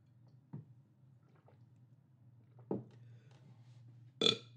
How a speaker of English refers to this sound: every so often, I don't know if everyone knows this, but we bleep out the belches in this podcast, but sometimes we have to leave them in for the people to know exactly what you're doing for the joke.